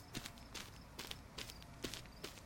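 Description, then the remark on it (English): Horse hooves clip-clop in a steady, even rhythm, about six sharp knocks spaced evenly apart, fairly quiet, with no voices over them. “Send him out on the horse he rode in on. The horse.”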